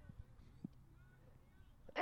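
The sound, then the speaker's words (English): After a stretch of near silence, a single loud sneeze bursts out abruptly at the very end, a sharp breathy blast that gets cut off. “Gesundheit.”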